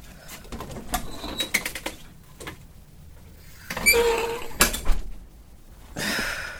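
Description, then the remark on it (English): Clicks and scraping sounds lead into a louder mechanical rattle and a sweep of rushing noise as a front door is opened. No one speaks. “Yeah, and I need you to wait until I'm in the booth before you open the front door.”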